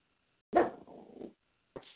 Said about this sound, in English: Oh, sorry. I have a little dog that's going to bark because we have a male person here.